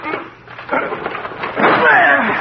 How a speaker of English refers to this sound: The door's locked. He must be in there, but there's no sound in there now. Well, we've got to break the door down. Yes. Put your shoulder beside mine.